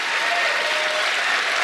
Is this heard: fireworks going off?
no